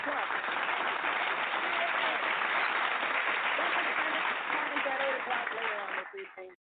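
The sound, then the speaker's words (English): A crowd applauds steadily and loudly for about six seconds, with cheering voices mixed in, before the clapping quickly dies away. “Some people in the basement that clap.”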